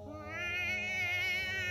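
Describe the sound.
A person imitates a cat's meow like Toshio from the 2002 remake of The Grudge, holding one long, strained, slightly wavering yowl for almost two seconds at a steady, fairly loud level, with no words.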